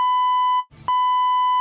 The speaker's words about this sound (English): See, you have to beep him out.